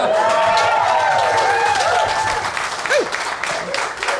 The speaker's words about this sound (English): The applause like sign is still popping might be, up. Might be one too many applause breaks at this point.